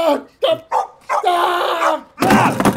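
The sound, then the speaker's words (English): A dog barks repeatedly and loudly, short sharp barks followed by a long drawn-out growling howl, then a harsh burst of barking, with a person's voice mixed in. “I told you you shouldn't have kicked that dog.”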